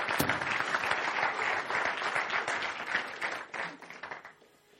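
A crowd applauds with dense, steady clapping that holds strong for a few seconds, then gradually thins and fades out toward the end.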